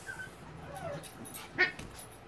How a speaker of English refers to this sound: Our dogs are playing. If you hear that noise, no one's getting hurt. We're keeping an eye on them.